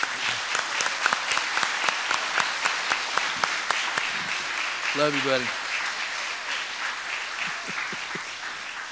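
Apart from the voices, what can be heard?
audience applause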